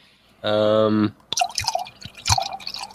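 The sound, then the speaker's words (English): A brief steady buzzing tone, then beer poured into a glass: irregular splashing and gurgling with a few soft low thumps, moderately loud, lasting a couple of seconds. “That sounds like beer.”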